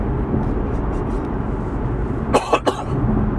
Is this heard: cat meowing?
no